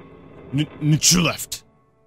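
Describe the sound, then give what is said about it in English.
A single sneeze: a few short, voiced breaths building up, then a sharp, hissy burst and a brief trailing exhale. It is fairly loud against a quiet background. “Bless you.”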